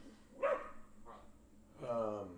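A few short, high yapping barks from small blue, black and silver-grey herding dogs, a sharp one followed by a fainter yip, then a longer whining bark, coming through at moderate volume over a dull background.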